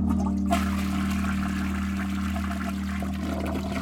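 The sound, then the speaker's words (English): A toilet flushes with a sudden rush of water that churns and gurgles steadily for a few seconds over a low, constant hum, loud, with no voices. “Your food is rationed, and the love of your life has been flushed down the toilet.”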